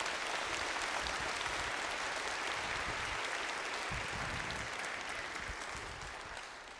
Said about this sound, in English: Round of applause. We're so glad to have them.